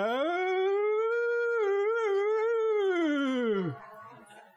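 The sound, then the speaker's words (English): A voice imitates a puppy howling like a rooster crowing: one long, loud howl that rises, wavers in the middle, then slides down and trails off, with no other sounds around it. “She said, it's that puppy. I said, crowing like a rooster?”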